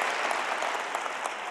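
A crowd applauds steadily, a dense wash of many hands clapping at once with no pauses, holding an even loudness throughout.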